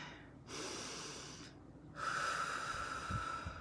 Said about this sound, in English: Deep breathe with me right now and try to keep doing it during this entire presentation.